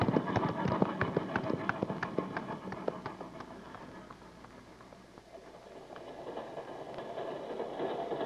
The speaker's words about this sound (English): We'll race with the train into Jackson.